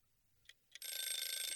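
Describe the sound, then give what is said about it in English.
An oven timer for baking bursts into a loud, continuous metallic ringing after two short brief dings, the bell's rapid rattling sustained at high pitch until the end, with no voices. “I think that's the timer now.”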